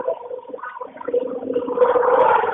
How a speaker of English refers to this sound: Are you on a train? I am on a train. That is incredibly loud. Wow. Yes, it is. Usually it's not that loud. It's pretty bad.